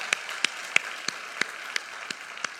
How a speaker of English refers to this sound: Give Jesus the greatest hand clap you've ever given anyone. Hallelujah.